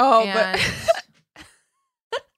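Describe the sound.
A voiced vocal sound gives way to a breathy burst, followed by two short, abrupt hiccups spaced apart, the last one sharp and brief.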